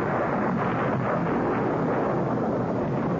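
A loud, sustained rumble of thunder rolls through a stormy roar at night, shaking an old house, steady and heavy for the whole stretch with no distinct breaks and no voices.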